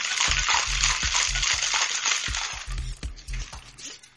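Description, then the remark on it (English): Ice rattles hard inside a cocktail shaker as a Zinfa margarita made with sweet and sour and white Zinfandel is shaken, in a quick, steady back-and-forth rhythm, a loud, bright clatter of repeated thumps that carries on for several seconds with no one speaking. “You put it all together and you shake it up.”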